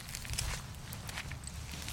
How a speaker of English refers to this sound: The gravel crunched beneath my feet and the noise coming from within grew louder.